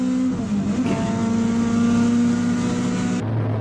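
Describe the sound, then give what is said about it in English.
Loud race car engines roar steadily as the cars accelerate out of a corner, the pitch holding high before dropping abruptly near the end like a gear change. No voices are heard. “That's the momentum that you're talking about is here, coming out of this turn, whereas we're watching this. Some cars seem like they're flying.”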